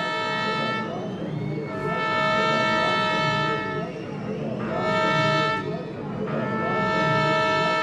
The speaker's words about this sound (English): The horns play these like train whistles that become kind of ominous.